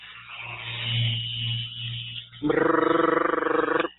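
A low electric hum runs for a couple of seconds, then a Rapid Release vibrating massage therapy machine kicks on with a loud, harsh, rapidly pulsing buzz that holds steady before cutting off.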